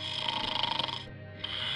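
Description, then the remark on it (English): Loud, rattling snoring from a man sleeping in bed, a rough vibrating inhale that flutters rhythmically, pauses briefly, then starts up again, alone with no talking. “He was in a funny position with his hair a crazy mess and a snore that would wake the neighbors for miles.”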